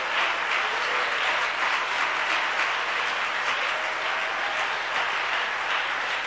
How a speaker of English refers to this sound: Let's give the Lord a hand clap of praise right now.